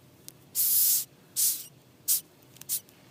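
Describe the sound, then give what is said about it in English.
Several sharp, breathy hisses of a Madagascar hissing cockroach, a roach nearly 4 inches long, hissing as a defense mechanism: one long burst, then shorter puffs, bright and airy with no voices over them. “They hiss as a defense mechanism, but they're very friendly and they rarely enter homes.”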